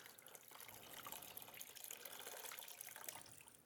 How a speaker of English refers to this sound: What's happening, it's so saturated that it's just leaking through, right? It's not a surprise to anybody. But let me show you another way to get that water out, what's coming in for it to go out.